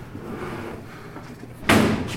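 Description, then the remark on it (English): A stuck metal filing cabinet drawer in a barn is jerked hard near the end to force it open, giving one loud scraping clunk after a stretch of low rumbling and quiet rattling. “One of the filing cabinet drawers was stuck and wouldn't open.”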